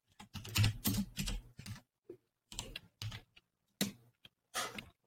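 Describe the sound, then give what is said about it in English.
Loud clatter of typing on a mechanical computer keyboard, bursts of rapid clacky keystrokes separated by short pauses, with no voices. “I really wish your keyboard wasn't so loud. It's mechanical.”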